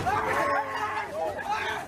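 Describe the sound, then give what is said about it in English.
Noise of a rowdy crowd of students: a dense babble of many overlapping voices chattering and calling out at once, loud and steady throughout with no single voice standing clear. “But messages like this were quickly drowned out by the noise of a rowdy crowd.”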